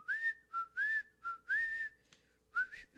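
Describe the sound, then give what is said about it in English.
A person whistles a short melodic tune, with clear rising and sustained notes in a bouncy rhythm, several phrases separated by brief pauses, with no talking. “Because that's what whistling is.”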